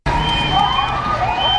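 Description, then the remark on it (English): A loud, continuous rally din of striking nurses outside Mount Sinai's main campus, with a crowd shouting and shrill whistles blowing, mixed with clanking cowbells and sustained car horn tones blowing in support, all dense and unbroken throughout. “Whistles, cowbells, car horns blowing in support. Striking nurses rallying outside Mount Sinai's main campus.”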